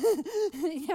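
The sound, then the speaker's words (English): A voice imitates rapid hyperventilating breaths: four or five quick, voiced gasping pants in fast succession, fairly loud, with no words. “not hyperventilate. It's slow breathing.”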